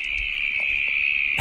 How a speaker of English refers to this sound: That's a cricket. They are so ear-splittingly loud. I've actually brought it in here at quite a low volume. When you're near these things, it's just almost like white noise. It's quite incredible.